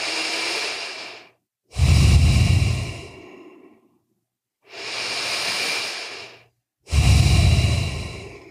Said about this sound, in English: Relax your jaw. Just breathe in and out through your nose for three breaths. No mouth yet. Just breathe through your nose in and out.